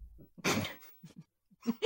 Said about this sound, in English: It's not true. He loves to sneeze.